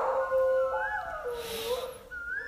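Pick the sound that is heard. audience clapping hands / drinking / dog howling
dog howling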